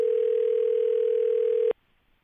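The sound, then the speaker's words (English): A steady telephone dial tone hums at one constant pitch for nearly two seconds, loud and clean, then cuts off abruptly into near silence, as a phone call is placed to Ross Tucker. “Dial him up there”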